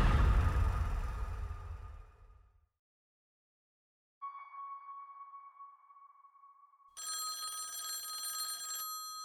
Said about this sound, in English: Montreal Museum of Fine Arts … answers his ringing phone.